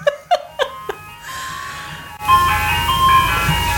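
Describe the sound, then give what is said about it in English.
An ice cream truck arrives outside on a day of about 67 degrees, playing a tinkling melody that opens with a few bell-like chimes and then a steady, tuneful electronic jingle over a low engine rumble, moderately loud. “The ice cream truck has arrived.”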